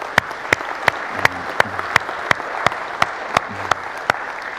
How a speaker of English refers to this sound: So can we give a round of applause for that?